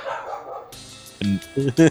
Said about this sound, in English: Oh, Joy, dogs. Thanks, Leia, for making a brief guest appearance.